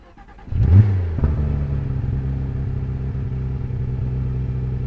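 A Porsche 991 Gen 2 GT3 Touring's flat-six engine is started with a key and the clutch dipped, giving a brief loud rev after a moment of quiet, then quickly settles into a steady, throbbing idle that runs constant to the end as it warms up.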